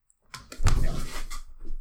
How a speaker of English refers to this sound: there's a door behind him and he went to go close it.